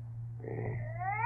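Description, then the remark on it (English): A cat yowls in a drawn-out, muffled cry that rises in pitch toward the end, sounding as if behind a closed door, over a steady low hum. “And I'm telling you, that cat you got in there is violating the city ordinance.”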